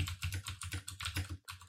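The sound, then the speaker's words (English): Rapid clicking of keys on a computer keyboard as someone runs a Google search, a quick irregular patter of taps with a brief pause near the end, moderately loud, no voices. “You can hear him typing.”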